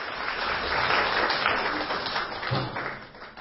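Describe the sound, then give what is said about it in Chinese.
Warm applause from an audience welcoming a khenpo to give a talk on life wisdom. A dense, steady wash of many hands clapping holds for several seconds before starting to thin out and fade at the end. “所以现在让我们用热烈的掌声欢迎堪布给我们讲人生智慧。”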